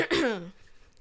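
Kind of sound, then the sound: human body sound, throat clearing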